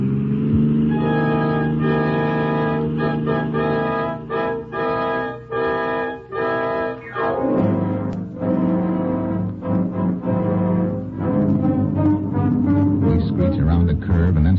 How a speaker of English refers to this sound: Their car roars past.